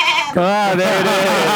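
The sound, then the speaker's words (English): A goat bleats loudly in one long, wavering cry, its quavering pitch sliding up and then settling into a steady, nasal drone. “Cue the goat. Cue the goat. Yes, the goat will be heard.”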